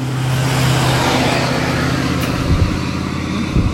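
A large truck pulling a trailer drives past on a road without slowing, its deep engine drone and broad road roar steady and loud for a few seconds, with a few rattling clunks near the end.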